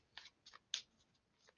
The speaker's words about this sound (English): So, as I shuffle the Tarot Mucha